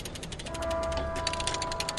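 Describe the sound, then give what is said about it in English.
Mike Anderson works a ratchet jack at the end of an old pier at NOAA's downtown port facility in Juneau as the clock chimes 12 o'clock, giving off a steady run of sharp, rapid clicks, with a sustained ringing tone humming underneath the mechanical clatter. No one speaks. “As the clock chimes 12 o'clock, Mike Anderson works a ratchet jack at the end of an old pier at NOAA's downtown port facility.”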